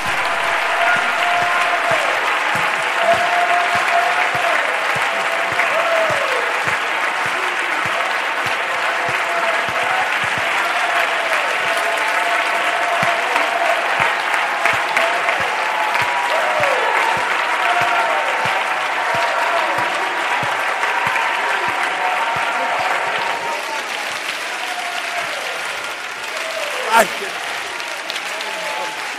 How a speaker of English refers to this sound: Let's give him a standing ovation for just a moment, for what he has done and for what he's about to do here now with us.